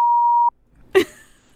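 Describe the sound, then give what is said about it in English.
A steady, mid-pitched censor bleep, dubbed over a burp in a recording, holds for about half a second and cuts off, followed after a brief pause by a short, rough burst that sounds like the tail of the burp. “I'm going to bleep my burp.”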